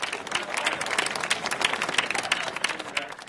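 An audience applauds steadily, a dense wash of many hands clapping at moderate volume with no voices on top, sustained evenly for a few seconds.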